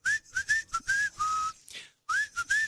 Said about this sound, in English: whistles through his teeth like I whistle this. Between... Whistle for them. A hole in my teeth.